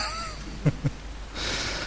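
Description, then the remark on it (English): A quick, muffled sneeze in two short bursts, one right after the other, against a quiet background hiss with no talking. “Bless you.”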